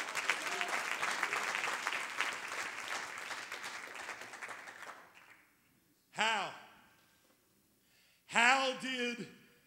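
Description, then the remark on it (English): A crowd claps its hands unto the Lord, steadily in a dense, fast patter for about five seconds, then fades out; afterward a voice lets out two short, rising-and-falling exclamations. “Oh, somebody clap your hands under the Lord.”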